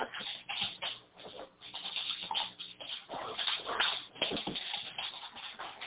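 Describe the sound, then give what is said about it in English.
A big 90-pound outdoor dog whimpers and whines, with soft shuffling and movement noises throughout, the whimpers rising and falling in short, uneven bursts. “Let me see your 90-pound lap dog.”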